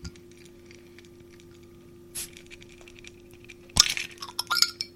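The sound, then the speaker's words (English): A key scrapes and clicks against a can of caffeine-free fizzy drink, then a sharp pop and a burst of hissing fizz, with a few small clinks as the can is pried open with the key. “Get cracking open, and I'll do this by mic, so hopefully it can hear it if it fizzes or not.”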